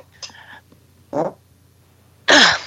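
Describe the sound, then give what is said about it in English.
Three short fart noises in quick succession: a faint sputter, a brief louder blurt, then a loud, raspy, drawn-out burst at the end, with no talking. “Speaking of farts.”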